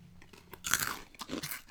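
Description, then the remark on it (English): Someone crunches on two salt and vinegar chips: a loud, crisp burst of brittle crackling followed by a second, softer round of chewing crunches, with no talking. “I gave you two just to get lots of salt and vinegar going on there.”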